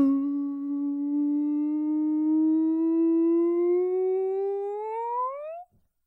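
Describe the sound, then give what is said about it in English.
Bosley, a pet dog, gives one long, steady howl lasting about five seconds, its pitch creeping upward and then sweeping higher before it cuts off abruptly. No one talks over it. “He barks again.”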